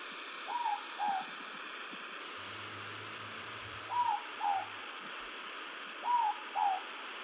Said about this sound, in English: The first is the Moorpok Owl, so named because of the call it makes. Apparently it sounds like someone requesting an extra slice of pork.